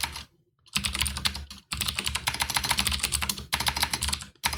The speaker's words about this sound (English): Oh my god, stop backspacing. You gotta get a keyboard with keys because you apparently don't know your keys.